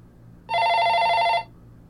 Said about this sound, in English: The phone on her nightstand rang, causing her to wake with quite a jolt.